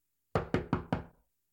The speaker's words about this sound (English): Baba, she knocked on that closet door